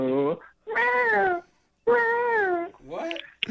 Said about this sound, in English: Why the meowing? I thought that was a baby crying.